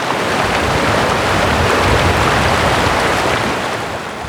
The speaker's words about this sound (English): All that could be heard was the river.